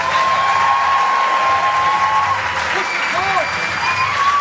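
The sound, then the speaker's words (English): A live audience at the Comics Lounge claps and cheers steadily as two performers are welcomed to the stage, a dense wash of applause with a few high whistles cutting through, loud, with no pause in the noise. “No clapping from you guys.”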